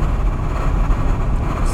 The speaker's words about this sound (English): If you guys can hear that window noise, it's my apologies, but I don't apologize, remember?